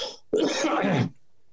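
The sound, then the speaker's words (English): A single rough, throaty cough bursts out, lasting under a second, with no talking around it and only a faint scrap of sound just before. “Pardon me for coughing.”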